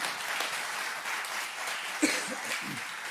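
An audience applauds steadily, a dense wash of many hands clapping at once, with a brief louder burst and a few faint voices mixed in partway through.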